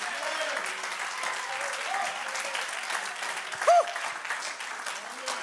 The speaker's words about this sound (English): Clap your hands unto the Lord. Magnify the name of Jesus.